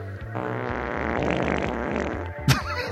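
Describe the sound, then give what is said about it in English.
A long, loud, buzzy fart sound rumbles for nearly three seconds with a rippling, sputtering texture, then ends in a short sharp burst. It is not made with a fart app. “We even have a fart fucking app, and you didn't do the fart sound.”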